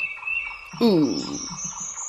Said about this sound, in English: Ooh. That bird is loud. That's something we commented on because we talked about this skill and how it's really hard to clear your mind, particularly when there's a very chirpy, loud bird in your ear.